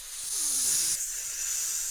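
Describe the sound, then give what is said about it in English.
A wrestling crowd hisses steadily at a wrestler in imitation of a snake, a loud, sustained airy hiss that shifts slightly in tone midway and carries on without pause for the whole two seconds. “They're hissing. He's a snake.”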